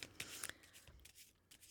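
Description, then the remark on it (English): A deck of tarot cards being shuffled for a single card pull, with quick riffling bursts and soft flicks of cardstock in an irregular rhythm, quiet overall and with no voices. “So on the card, you can probably hear me shuffling.”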